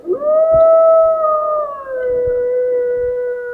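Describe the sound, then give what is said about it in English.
A single long, loud wolf howl, rising at the start then holding a steady, slightly falling tone for several seconds with clear harmonics, alone with faint low background rumble. “Social presence of a wolf.”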